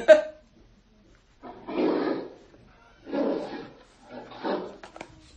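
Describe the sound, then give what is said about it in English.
A bear growls three times in low, rumbling bursts of about a second each, separated by short pauses, moderately loud after a brief opening click. “The correct answer is a bear.”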